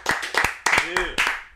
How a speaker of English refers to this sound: I think we'll give a round of applause for that whole thing.